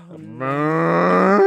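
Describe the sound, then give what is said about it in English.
A single drawn-out, low moo made by a man imitating a cow, starting soft and swelling louder over about a second and a half, unaccompanied. “He's mooing, and now he wants mooing. A cow.”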